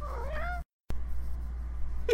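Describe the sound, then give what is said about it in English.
A cat meows in a drawn-out, wavering cry, followed by a brief pause and then the start of a second, sharper meow at the end. No one speaks. “Why is your cat so damn cute?”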